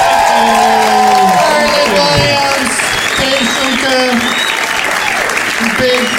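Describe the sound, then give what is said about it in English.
A comedy show crowd at the Comedy Mix claps loudly and steadily for the night's guests for about six seconds, with scattered cheers, whoops and voices rising over the dense, continuous applause. “Let's hear it for all of my guests.”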